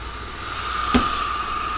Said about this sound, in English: So I'll press the steam up again. You can hear it change. And it is now steaming.